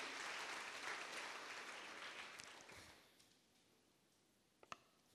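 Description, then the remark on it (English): An audience claps together in praise to the Lord, a dense, steady patter that fades away after about three seconds, leaving quiet broken by a couple of sharp clicks. “Come on, the best clap of praise to the Lord.”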